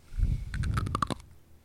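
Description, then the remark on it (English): Crunchy cereal made of whole grain wheat flour, malted barley flour, salt and dried yeast being chewed right into a microphone: a low mouthy rumble, then a quick burst of about eight crisp, loud crunches before it trails off. No one speaks. “You used to yell at me all the time for eating in the microphone,”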